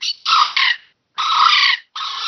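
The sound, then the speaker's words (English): Three loud, harsh squawking bursts imitating a bird in distress, blown on a reed predator call, the first two close together and the last cut short, with brief silences between and no talking. “Is that meant to be a bird distress sound, that one?”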